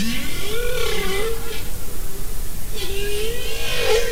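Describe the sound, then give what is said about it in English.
Two long, moaning whale calls sweep up and down in pitch, the second after a short pause, over a steady hiss of underwater noise; a bowhead whale, a big baleen whale of Arctic waters, singing. “The humpback whale song is way more complicated than any of the others, but some of the others are really interesting, such as the bowhead whale, a big baleen whale of the Arctic waters.”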